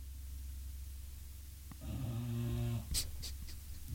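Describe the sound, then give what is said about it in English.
A flat-nosed dog snores with a single rough, rattling breath lasting about a second, low-pitched over a steady quiet hum, followed by a few soft clicks. “That's why you can hear Daisy snoring right now.”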